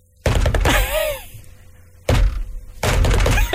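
Knocking a rhythmic beat on a desk, like a delivery driver's cool knock: a few heavy thunks in short bursts, loud and somewhat uneven rather than a steady beat, with a brief squeaky vocal sound between them.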